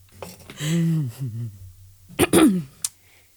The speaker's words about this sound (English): … coughs to hide a laugh.